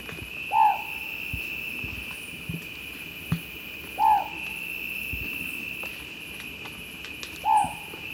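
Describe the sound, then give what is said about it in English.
A long-whiskered owlet, one of the smallest owls in the world, found in one small part of the Andes Mountains in Peru, gives three short, clear hoots spaced about three and a half seconds apart, each a quick slightly descending note, over a steady high insect drone at night. “The long-whiskered owlet does indeed have long, wispy feathers radiating outward from around its beak and its caramel-colored eyes.”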